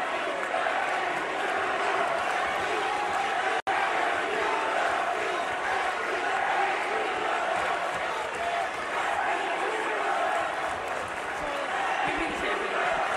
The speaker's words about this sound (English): You can barely hear it, but the crowd is chanting Becky two belts